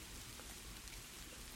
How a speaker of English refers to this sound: Intermittent sleet at least brought variation to the whipping rain.